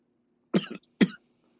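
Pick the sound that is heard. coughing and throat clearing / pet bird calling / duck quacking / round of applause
coughing and throat clearing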